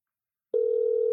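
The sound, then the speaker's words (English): After a brief silence, a telephone ringing tone starts as a call is placed to a bar. It is a single steady, mid-pitched electronic hum that holds unbroken to the end, with no one speaking. “Is that what happens when you call a bar around here?”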